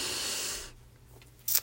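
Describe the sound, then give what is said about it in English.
A deep, airy inhale drawn for under a second during a breathing exercise, followed by a quiet pause and a brief, sharp breathy burst at the end. No one speaks. “Okay, so we're going to do these little breathing exercises real quick so we can get into what we need to get to.”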